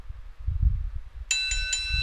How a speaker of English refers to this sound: There we go, the bell's back and it's rung for another week.